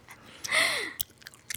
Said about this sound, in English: Let me stop chewing this fucking gum right now.